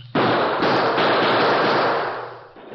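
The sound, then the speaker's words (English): A dense, continuous barrage of pistol gunfire, from the Redford sheriff and a group of townsmen with the Lone Ranger firing back to cover a retreat, roars at full volume for over two seconds, the shots blurring into one rough wall of noise before tapering off. “Faced with an advancing wall of gunfire from the Redford sheriff and a group of excited townsmen, the Lone Ranger put his own guns into action to cover a retreat.”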